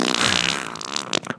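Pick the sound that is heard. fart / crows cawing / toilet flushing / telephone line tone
fart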